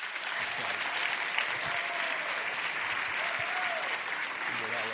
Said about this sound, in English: A warm Socrates in the City round of applause for Brigadier General Charles Moss Duke.